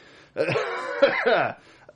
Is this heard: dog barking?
no